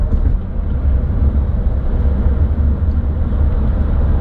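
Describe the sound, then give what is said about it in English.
Steady, low road rumble and engine drone from inside a 2021 Chrysler Pacifica minivan moving through traffic, loud and unbroken for the whole stretch, with no voices. “Well, traffic isn't as bad as I thought it was going to be.”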